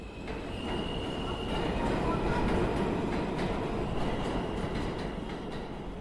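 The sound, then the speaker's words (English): A Washington DC metro subway train rumbles steadily along with a dense, low roar and faint rhythmic rattling. A thin metallic whine rides above it, constant throughout, with no voices. “descended again into the arteries of the DC subway system.”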